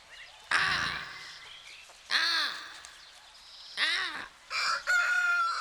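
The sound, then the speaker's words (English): A rooster crows four times in close succession, loud and harsh, with short gaps of quiet between the calls and no talking. “Feed my chicken.”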